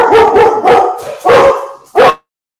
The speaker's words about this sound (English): Sorry, that was Ash. Ash is barking at someone outside the door, I think.